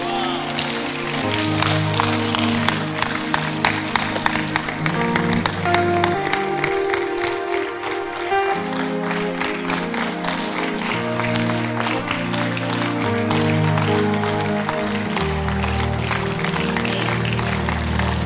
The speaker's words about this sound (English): Clap your hands, stand.